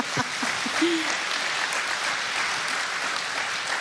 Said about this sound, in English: No reasons necessary. Let's give that a cheer.